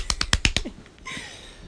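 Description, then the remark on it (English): A quick run of about five sharp hand claps in an even rhythm, fairly loud, given in honor of civil rights leader Bayard Rustin, followed by a second of quieter background hiss with no talking. “Hand clap for Bayard Rustin.”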